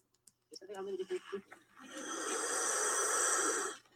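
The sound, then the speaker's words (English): A Komodo dragon on Komodo island gives a few low, throaty snorts and grunts, then lets out a long, loud, breathy hiss lasting about two seconds before cutting off. “This is from a Komodo island of Komodo dragons.”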